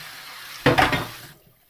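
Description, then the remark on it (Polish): A short burst of running water splashes as something is rinsed with plain water and no chemical cleaners, loud for about half a second before it stops, leaving only faint background noise. “Pozostało mi tylko spłukać.”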